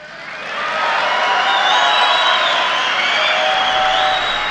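A large crowd of Trump supporters cheers and shouts steadily at a meeting where President Trump is speaking, a dense roar of voices with scattered high whoops, swelling quickly at the start and holding loud for several seconds.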